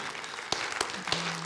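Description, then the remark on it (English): Scattered audience clapping, a soft wash of claps with a few sharper, louder individual claps standing out, and a low steady hum entering toward the end. “You can clap, that's fine.”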